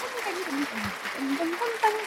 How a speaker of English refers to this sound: Welcome to our show. Let's give you a little clap.